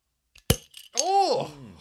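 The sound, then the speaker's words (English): A single sharp pop as a bottle of homemade alcohol is opened, short, with a few faint clinks around it, followed by a person's drawn-out vocal reaction. “Let me pop this open.”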